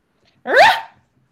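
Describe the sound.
A person imitates their own dog's bark with a single loud bark-like yelp, rising harmonics bursting briefly and cutting off, heard alone against silence.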